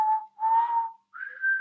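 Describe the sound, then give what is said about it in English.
A person who cannot whistle well whistles two thin, airy notes, the first wavering and mixed with breathy hiss, then a short pause before a slightly higher, steadier tone. The whistle is fairly quiet. “So I was just like, I can't whistle very well. I can, but it's not very good.”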